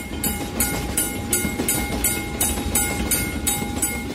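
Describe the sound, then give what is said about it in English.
Steady, rhythmic clickety-clack of train wheels over rail joints, repeating about every half second over a deep rumbling carriage and a faint steady hum, recorded from inside the moving train on a trip for use in a video game. “we recorded all the audio from all of these trips. And we've done the same thing with other places like Caltrain”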